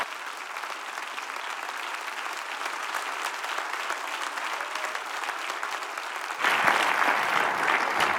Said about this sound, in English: Would you clap your hands just thunderously one time before the Lord and give him praise?